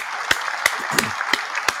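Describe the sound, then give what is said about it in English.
Applause celebrating Nick Cannon expecting twins: a steady wash of many hands clapping, with five louder, evenly spaced claps punching through at a brisk rhythm, with no voices. “Let's go ahead and give some round of applause to Black Love and Babies being born.”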